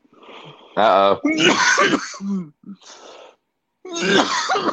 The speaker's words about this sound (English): By all means, sir, cough.